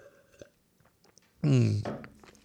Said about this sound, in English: In fact, it's so live, I'm going to take a drink right now.